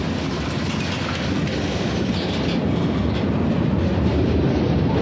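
A train rumbles steadily along the rails, a dense, continuous low clatter with fine rhythmic knocking from the wheels, loud with no voices throughout.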